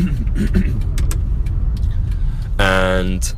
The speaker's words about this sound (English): and the reason I'm doing this right now in my car on the way back home while I'm driving... Oh shit, come on. Safely, I might add. Just with my phone situated on the steering wheel